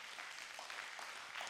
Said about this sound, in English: Can you give the Lord a hand clap of praise for that?